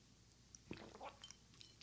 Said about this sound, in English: Just going to grab a sip of my juice.